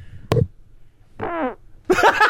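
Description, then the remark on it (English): A sharp thump, then a buzzy fart lasting about a third of a second, made by a man who took the microphone down to his pants and farted right into it, followed by a loud burst of rough noise. “literally took the mic down to his pants and farted into the mic.”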